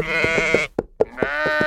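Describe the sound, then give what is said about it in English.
Two loud sheep bleats with a wavering, quavering tone, separated by a short pause with a couple of soft thumps, nothing else in the background. “I loved it there, as we had sheep and donkeys grazing near our home in Ebury Street,”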